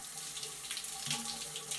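Steady rushing water pours continuously from a running shower in a small stall, an even hiss of running water, with no voices over it.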